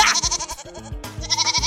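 A goat bleats loudly in two wavering, quavering calls with a brief dip between them; no one speaks.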